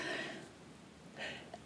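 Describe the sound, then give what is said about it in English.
A quiet, muffled sneeze: a short breathy burst, then a second gasping burst about a second later, with no talking in between. “Bless you.”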